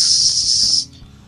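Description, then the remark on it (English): A voice imitates a weasel that pops up its head and hisses at Neris: one steady, loud, breathy hiss lasting under a second, then cutting off into quiet. “The weasel pops up its head, looks at Neris, and hisses.”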